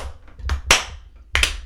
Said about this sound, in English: So Slow clap for your dad.